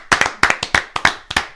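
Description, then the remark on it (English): A short burst of crisp hand claps, about ten sharp slaps in quick, slightly uneven pairs, fairly loud with no talking over them. “Yeah, let's get a clap up.”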